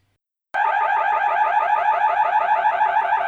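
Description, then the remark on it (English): A loud electronic security alarm blares after a moment of silence, rapidly warbling back and forth between two piercing high-pitched tones in a steady, continuous pattern. “The security alarm screams. The sound swims in and out between two brutally high-pitched tones, each iteration swallowing the last.”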